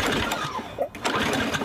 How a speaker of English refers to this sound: I have put up with this stupid lawnmower barely running all season. I'm over it. It's gotta go. Your old mower barely runs.